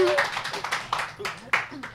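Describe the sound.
Audience applause, a dense wash of many hands clapping with scattered sharper claps and some crowd voices mixed in, holding steady for a couple of seconds.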